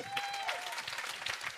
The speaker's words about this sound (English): Round of applause